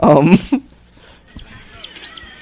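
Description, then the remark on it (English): High, thin peeps from a bunch of ducklings chirp repeatedly in short bursts, scattered, after a brief loud voice at the start. “They got a bunch of baby ducks here.”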